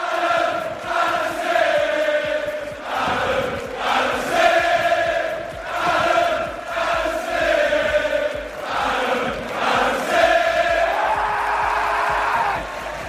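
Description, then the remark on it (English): A large AFC Bournemouth stadium crowd sings together in loud, sustained unison, orchestrated by Adam Smith while he films on his mobile phone; the massed voices swell and dip in a steady rhythmic chant that continues without a break. “Steve Phillips said, "This was my favourite moment," and he posted a video where Adam Smith was orchestrating the AFC Bournemouth crowd behind him whilst taking a video with his mobile phone.”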